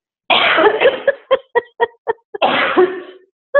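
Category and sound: human body sound, coughing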